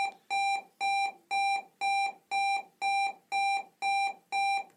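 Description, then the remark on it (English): An electronic school bell sounds in a steady run of nine bright, buzzy beeps, evenly spaced at a brisk pace, each held at one pitch, with no voices over it. “That's the school bell.”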